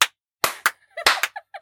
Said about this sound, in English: Everybody stand up and clap. Everybody clap.